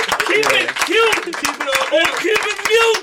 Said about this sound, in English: That's fire. Round of applause. Everybody. Round of applause.